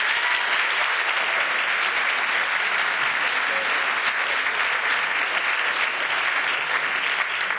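A crowd applauds steadily for several seconds, a dense, even wash of many hands clapping at a constant loudness with no voices standing out.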